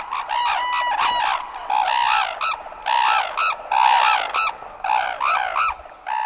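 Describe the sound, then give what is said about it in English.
Two red-crowned cranes on a snow-covered field in northern Japan face one another, raise their heads toward the sky and call in unison: a series of loud, harsh, trumpeting bugles in rapid overlapping bursts, with rising and falling notes interwoven between the two birds. “On a snow-covered field in northern Japan, two majestic red-crowned cranes face one another, raise their heads toward the sky, and call in unison.”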